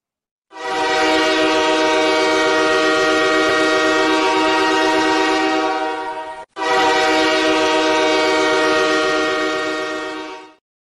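A loud, sustained train horn blasts for about six seconds, cuts off briefly, then sounds again for four more seconds, its rich stacked tones over a low rumbling rail noise, with no talking.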